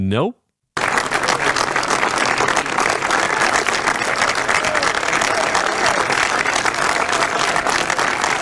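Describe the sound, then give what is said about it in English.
After a brief voice fragment and a split-second pause, loud, dense applause from Democrats from Congress at the Rose Garden party Clinton threw the day after he was impeached, as Bill and Hillary come out of the White House, rolls on steadily for nearly eight seconds, thick with overlapping claps and no letup. “This applause goes on for a long time.”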